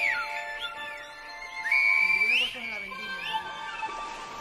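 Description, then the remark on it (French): Clear whistled tones of the Silbo whistled language slide up and down in pitch, a loud rising glide standing out in the middle, carried over a steady musical background. “Sur le volcan de la balade, El Silbo perce la fumée.”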